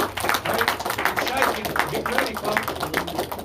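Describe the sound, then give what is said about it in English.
An audience claps steadily for several seconds, a dense, continuous patter of many hands at a fairly even level, with voices and a low sustained tone mixed underneath. “Can y'all just give me an applause?”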